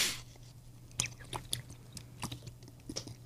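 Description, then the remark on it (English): Someone drinks water mixed with grape drink powder, with a string of irregular wet mouth clicks and smacks from sipping and swallowing, fairly quiet over a low steady hum, with no talking. “What are you drinking?”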